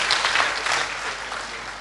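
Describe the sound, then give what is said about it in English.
An audience claps together in praise of God, a dense, sustained burst of applause, many hands overlapping into a steady bright wash of sound that holds loud for the full stretch without any voices. “Come on, let's give the Lord a clap and praise God.”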